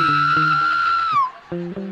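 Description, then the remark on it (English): A voice imitates a mourner's scream at a funeral: a sustained, high-pitched wail held for about a second before sliding downward, followed by short voiced sounds. “You ever been at a funeral and heard that one little scream?”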